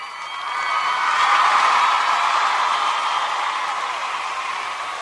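applause

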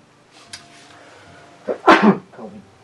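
sneeze

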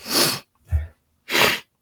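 sneeze

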